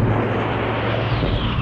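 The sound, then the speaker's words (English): A loud, steady engine roar fills the air, a broad droning rumble with a low hum underneath, as an enemy plane flies overhead while searchlights look for it. No voices are heard. “Blimey, that wasn't one of ours. The searchlights are looking for the plane.”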